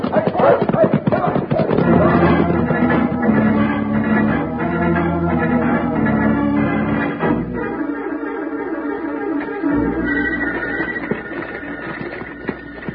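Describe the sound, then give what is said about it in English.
Horses being herded out and ridden gallop with a rapid, continuous drumming of hoofbeats, loud, while voices shout over the busy, dense mix. “Come on, let's herd these horses out and get to riding.”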